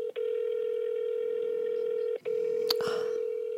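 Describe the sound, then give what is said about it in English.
An outgoing phone call to a family member rings with a steady electronic tone, broken by two short gaps, with a faint click and rustle near the end; no one speaks. “I'm telling you, this day and age, no one picks up their phone from an unknown phone number.”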